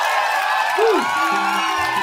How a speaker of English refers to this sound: I mean, you fucking guys, you guys are the loudest crowd ever to cheer after a show like that, man.